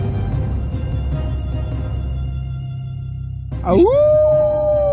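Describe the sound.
A single loud wolf-like howl bursts in near the end, swooping down and then holding a long, steady wavering note over a low, rumbling background.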